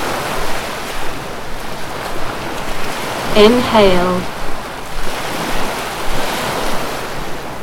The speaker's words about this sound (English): Listen to the sound of the sea.